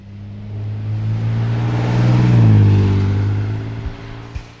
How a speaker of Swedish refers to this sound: Ja, men då kollar vi om vi kan starta din bil då.